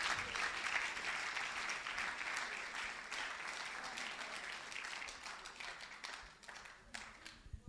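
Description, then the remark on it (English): An audience breaks into sustained applause for the Lord Jesus, many hands clapping in a dense, steady wash that holds for several seconds and tapers slightly near the end. “Clap for the Lord Jesus.”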